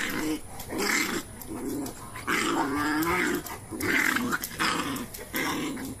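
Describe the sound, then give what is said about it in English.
A dog in a video being played growls and snarls in a series of rough, sustained bursts with brief pauses between them, loud, with no one talking over it. “Why is this fascinating to me? Because you like dogs. And chaos.”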